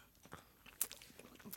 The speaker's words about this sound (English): Okay. So first up, in front of you You have the toast sandwich. So I invite you to take a bite. As you're chewing, I'll tell you what you're eating. This is bread.